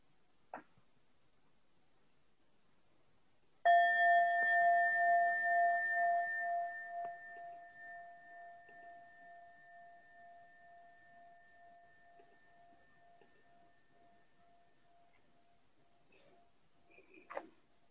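A meditation bell is struck once as a cue for listeners to open their eyes, its clear metallic tone swelling and wavering as it slowly fades over many seconds, heard alone with a faint click before and after.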